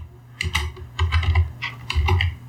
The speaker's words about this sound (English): Aggressive typing.